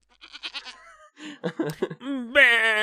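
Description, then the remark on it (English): A voice imitates a goat's bleat after announcing the game Goat of Duty, starting with short choppy quavering bursts and ending in a longer, loud, strained nasal bleat with strong wavering harmonics. “That's the sound a goat makes, right?”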